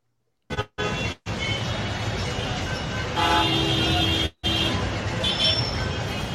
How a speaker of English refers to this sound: Come on. Move. Freaking traffic.